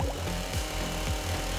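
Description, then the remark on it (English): A chainsaw revs in steady cycles, its loud buzzing engine note dropping in pitch roughly every half second before climbing again, with no voices over it. “After this unlocks, sounds like you hear something bubbling, and then you hear what sounds like the revving of a chainsaw.”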